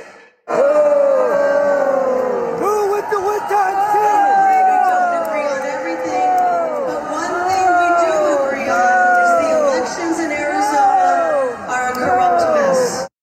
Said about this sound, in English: That was Arizona Senate candidate and prominent election denier Republican Carrie Lake getting loudly booed by members of her own party at the Arizona GOP's annual convention last month.